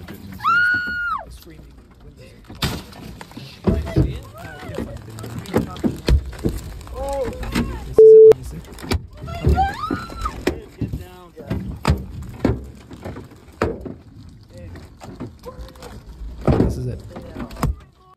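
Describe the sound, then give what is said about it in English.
Hail pounds hard against a car's windows on a highway, smashing out the windshield and side windows, in a dense, irregular barrage of loud cracks and thuds, while voices cry out in alarm over the din. “No, it smashed all the windows of the car.”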